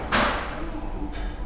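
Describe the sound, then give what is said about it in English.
Chairs being shifted around as people rearrange the furniture in a Starbucks café, with a loud scraping thud near the start and a softer bump a second later, over a low murmur. “There's people moving chairs again.”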